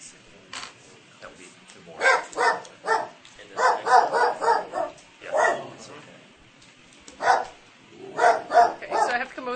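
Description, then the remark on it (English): A dog barks repeatedly in quick bursts, a few sharp barks followed by a rapid series, moderately loud, with short pauses between volleys. “Why are you barking?”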